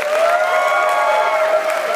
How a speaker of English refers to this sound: And again, everybody here at Alfred State College, thanks for hosting the Adam Ritz Show. Let's give yourselves another round of applause.